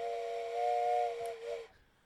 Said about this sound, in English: I mean, you could blow the whistle.